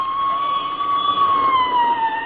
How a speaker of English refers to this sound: There goes another squad car, McGee. Mm-hmm. What do you suppose is going on?